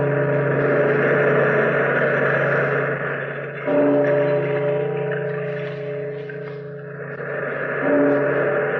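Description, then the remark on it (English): A deep bell tolls slowly, about three strokes several seconds apart, each leaving a long ringing hum that swells and fades before the next strike. No voices. “Bellkeeper, toll the bell.”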